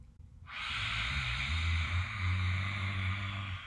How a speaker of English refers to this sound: Deep breath in. Stick your tongue out, look up, exhale. And that's just a little way to vibrate the throat. So let's do that maybe one or two more times. When you're ready, deep breath in. Lion's breath, exhale.